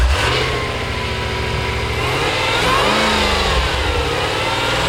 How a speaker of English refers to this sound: It's because I'm not hearing the exhaust note. You don't even need to hear the exhaust note. You hear the supercharger.